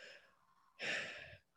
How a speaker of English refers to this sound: Now, if you take a deep breath in through your mouth, let's take a breath in through our mouth.